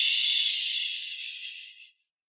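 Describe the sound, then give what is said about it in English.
A voice makes a steady, breathy "shh" hiss, mimicking air escaping from a flat tire, as a class's reply to the classroom attention call "flat tire". The hiss holds high and even for about two seconds before fading out and stopping. “And she says, flat tire. And then the class goes, shh.”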